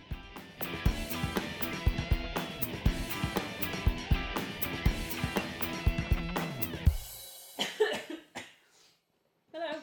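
A woman coughs hard and repeatedly in a close, loud fit of rapid harsh bursts that run on for several seconds, then trails off into a few fainter coughs and gasps before falling silent.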